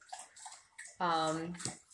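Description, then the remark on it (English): Wet, rhythmic slurping and splashing of a dog lapping up water in the background, with a brief voiced, tonal sound cutting in partway through before the lapping resumes. “Sorry, our dog is drinking water in the background.”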